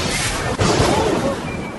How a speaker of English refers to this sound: That last bolt of lightning smelled like...